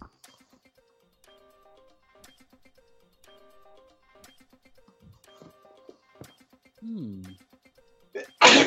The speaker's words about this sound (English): Bless you. Thank you.